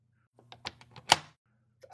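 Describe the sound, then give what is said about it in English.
A door lock turning: a quick run of small mechanical clicks leading to one sharp, louder clack, then a brief faint rattle. No one speaks. “I mean, I lock the door.”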